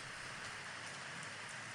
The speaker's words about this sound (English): I've got an app that does that. Oh yeah, a white noise app. This is rain on a tent. City rain.